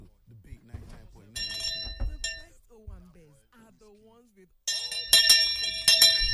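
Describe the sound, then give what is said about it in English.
A hand bell rings out in two bright, jangling, loud bursts, the second longer and more vigorous, with a person talking in the pause between them. “Where is my bell?”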